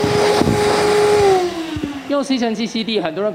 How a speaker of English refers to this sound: 用吸塵器吸地,很多人可能以為關掉之後就沒事了。Lots of people think they can just turn the vacuum off when they're done.